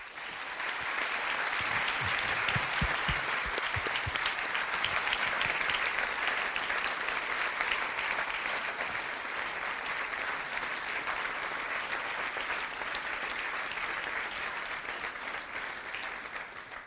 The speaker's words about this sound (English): Long clap.